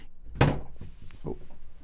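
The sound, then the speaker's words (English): A single heavy, loud thud of someone falling over, followed by a couple of softer knocks and a faint low rumble of background noise; no one speaks. “Someone just fell over.”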